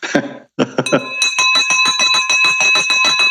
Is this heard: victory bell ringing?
yes